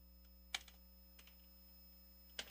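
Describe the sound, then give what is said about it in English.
A few sharp computer keyboard key clicks, sparse and irregular, over a steady low electrical hum, with no voices; someone typing live on air to post a link on Facebook Live. “Typing and talking is really hard to do.”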